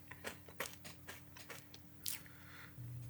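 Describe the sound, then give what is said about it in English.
A series of close, crisp crunches at an irregular chewing rhythm, like someone eating nuts, with a low steady hum beneath and no talking. “You hear troubled nuts or something, like crunches coming from over in his bed.”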